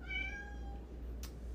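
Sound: cat meowing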